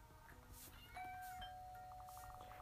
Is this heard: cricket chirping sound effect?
no